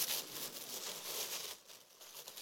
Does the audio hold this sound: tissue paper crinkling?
yes